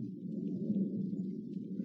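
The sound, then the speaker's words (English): A low, continuous rumble of distant thunder rolls on steadily for the whole moment, deep and muffled, with no voices over it. “The air seems charged with thunder, and I hear it in the distance.”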